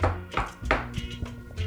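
household object, knocking on a door

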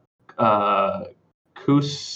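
human body sound, sneeze

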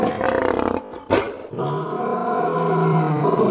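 animal, lion roar

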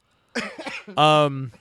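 human body sound, sneeze

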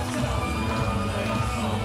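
crowd, arena crowd cheering

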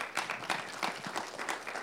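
crowd, audience clapping

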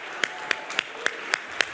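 crowd, audience clapping hands

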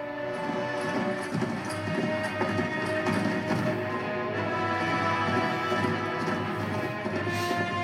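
animal, horse hooves clip-clopping

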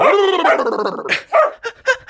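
animal, dog barking

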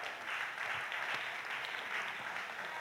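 crowd, audience round of applause

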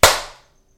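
human body sound, single hand clap

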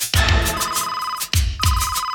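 signal or alarm, phone ringing

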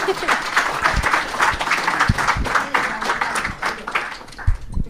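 crowd, audience round of applause

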